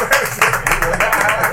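A brief, lively round of applause from a small group, dense overlapping claps filling the moment, with a few voices calling out underneath.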